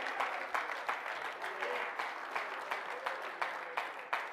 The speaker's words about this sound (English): If you believe that tonight, clap your hands and praise it.